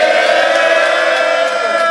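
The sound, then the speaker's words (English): A crowd at an iBattleTV main event roars and cheers in a steady, loud wall of noise, many voices yelling together without a break for the full two seconds. “Make some noise for these fellas.”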